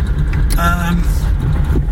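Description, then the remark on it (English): Steady low rumble of a car from inside the cabin, with a brief tonal squeal, thought to come from the brakes, rising over it about halfway through before the engine and road drone carry on alone. “There's a bit of a noise there on the car. Aye, because you've got an awful car, don't you?”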